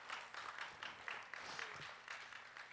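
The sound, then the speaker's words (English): An audience applauds in the morning, many hands clapping together in a dense, steady patter that holds at an even level for a few seconds with no voices over it. “a good hand of a good applause here this morning.”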